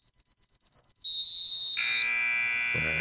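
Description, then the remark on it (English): A game show bell that cuts off a speaker's time sounds as a fast run of about nine shrill electronic beeps, then a long steady high tone that drops to a lower held note, with a low throbbing pulse at the end. “That bell is giving me a Pavlov's dog thing where I got to stop all of a sudden and stop my ramblings.”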